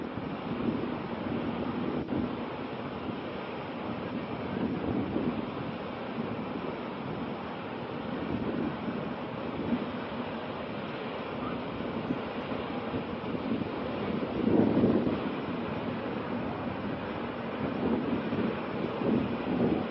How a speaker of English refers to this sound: Now look at this. Here comes the water off the mountain. Now look.